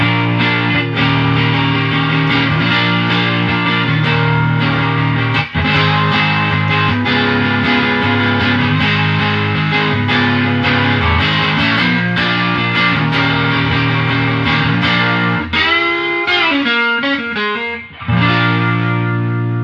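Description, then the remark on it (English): An electric guitar plays through a Vox Pathfinder R amp from around 2006 with reverb cranked up, loud sustained chords and ringing notes washing together, briefly dropping out near the end before resuming. No one speaks. “It is a Vox Pathfinder R, and this one's from like 2006, around that area. Just absolutely fantastic amp.”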